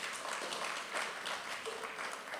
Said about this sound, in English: That clap right there seemed like it hurt right there.